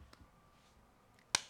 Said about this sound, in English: Slow clap. Slow clap, my dad. Slow clap.